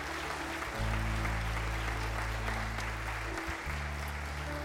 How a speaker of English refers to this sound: Everybody look up. Would you give these a round of applause for their decision?